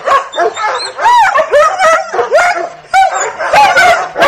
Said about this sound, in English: Oh, for the love. These dogs love me too much.